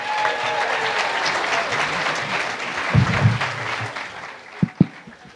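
A comedy club audience at The Punchline applauds a comedian introduced to open round one, with dense, rapid clapping and a few scattered whoops, the applause thinning out toward the end with a couple of sharp final claps.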